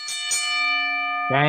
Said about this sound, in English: Sell or no sell, ring that bell. Go ahead, ring that. Oh, yeah. Good, ring that bell.